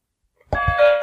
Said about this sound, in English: The answer, then the bell. Yes, the Titanic.